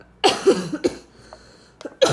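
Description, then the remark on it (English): A person with a lingering cough from an illness since February coughs several times, a quick burst of two or three harsh coughs, a short pause, then another loud cough at the end. No talking. “This cough I've had originally... Since I got sick back in February.”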